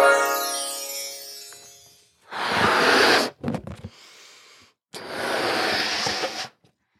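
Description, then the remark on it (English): Someone blows up a balloon by mouth: two long, forceful puffs of breath with a fluttery, sputtering gasp between them, after a fading squeaky tone at the start. No talking. “Why are you blowing up a balloon?”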